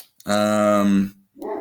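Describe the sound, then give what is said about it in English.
A dog lets out a loud, drawn-out bark that trails into a howl, then follows with a shorter, quieter bark, with no talking over it. “Can you hear the dogs barking, by the way?”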